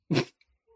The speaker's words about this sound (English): And a dog just losing its shit outside of my window.